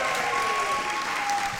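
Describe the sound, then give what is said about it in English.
An audience claps steadily, a dense wash of many hands applauding at a fairly even, loud level throughout, with no pauses or talking over it, applauding the lady in charge of the food at Heritage Christian School. “Wait, when I went to school, we weren't applauding in thanks.”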